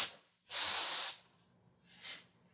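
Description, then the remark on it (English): A person hisses sharply at a cat with a loud, breathy burst lasting about half a second, preceded by a softer hiss and followed by a shorter, fainter one, with no talking. “That was me hissing at my cat for scratching the couch.”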